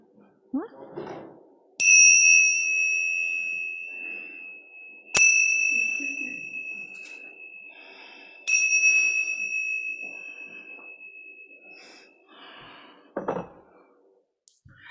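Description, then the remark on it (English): A chime is struck three times, a few seconds apart, each ring sharp at first and then sustaining with a long, gradually fading shimmer. Soft rustling and faint voices can be heard in between. “Ring the chime.”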